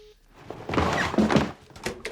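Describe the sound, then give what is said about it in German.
A telephone handset is set down onto its cradle, giving a short plastic clatter and a dull thunk, followed by a couple of softer clicks and rustles. “Der Hörer liegt nicht auf. Oh, leg ihn bitte auf,”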